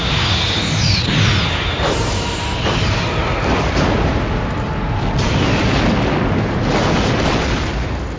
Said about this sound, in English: Target that explosion and fire. Fire!